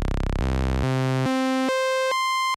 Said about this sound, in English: Basic waveforms is produced by oscillators on analog and virtual analog synthesizers. For example, triangle waves. Sawtooth waves.